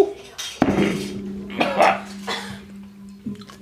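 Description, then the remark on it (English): A glass is slammed down onto a table with a sharp clattering knock, followed by a few lighter clinks and rattles over a low steady hum; a cough or throat sound also appears. “I'm sorry, I slammed down my glass.”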